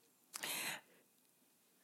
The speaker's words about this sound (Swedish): Gäspar du?